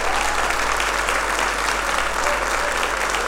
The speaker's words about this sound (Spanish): Dale un aplauso fuerte al que vive y al que reina.